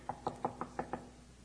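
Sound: knocking on a door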